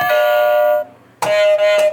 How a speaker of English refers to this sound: I like yours. That's awesome. I got a doorbell.